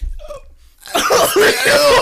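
After a quiet, muffled start, a person breaks into loud coughing and retching, harsh strained bursts running together for about a second with throaty, voiced gagging noises.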